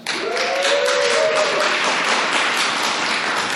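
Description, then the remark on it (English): An audience breaks into steady applause to vote for the story Hold My Beer, dense overlapping claps sustained at an even level for several seconds, with a brief faint whistle-like tone rising early on. “So, if you like Hold My Beer, give me a round of applause.”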